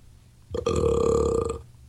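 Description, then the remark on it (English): A single loud, rumbling burp bursts in after a brief quiet moment and holds for about a second before cutting off, with no talking. “What a burp.”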